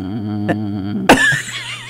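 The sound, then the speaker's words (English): A steady, continuous telephone dial tone hums for about a second, then breaks off with an abrupt burst of noise followed by faint wavering electronic tones. “That's the dial tone.”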